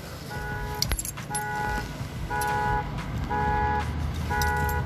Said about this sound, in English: I had to check and see what my alarm system is. Ain't my car. I thought it was my car going off.